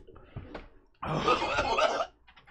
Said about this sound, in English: He's puking. Shut that door.